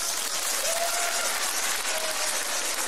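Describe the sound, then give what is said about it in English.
A crowd of men applauds steadily, a dense, continuous wash of clapping at an even loudness for about three seconds, with faint whistles or cheers poking through briefly; audience men clapping when asked to clap if they are loyal to their women. “Let me hear the men clap that are loyal to their women.”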